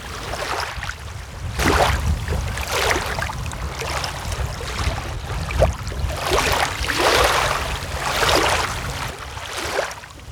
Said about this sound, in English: The water makes gentle waves as it passes through the rocks, providing us with a relaxing sound.